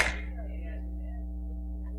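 One sharp hand clap from an excited man in a church audience who nearly dropped his Bible trying to clap, bright and percussive, fading quickly into a steady low hum that continues underneath.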